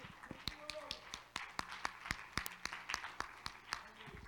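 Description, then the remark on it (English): A Christian audience at its assembly claps in sharp, uneven bursts, with many hands striking at slightly different moments over a low murmur of voices and background hum. “You can clap.”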